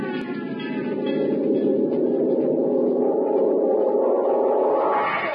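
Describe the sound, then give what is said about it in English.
A fire bell rings without pause for about five seconds, a steady, loud, buzzing clangor that swells slightly toward the end, with no voices over it, sounding for a fire at a gold mine. “That's the fire bell.”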